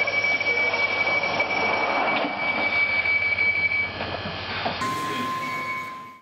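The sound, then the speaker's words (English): A loud London Underground train at Angel station hums and rumbles steadily, with a whining tone and rushing noise that shifts near the end as it departs from the platform. “This station is Angel. This train is about to depart. Please mind the doors.”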